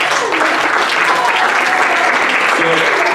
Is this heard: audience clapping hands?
yes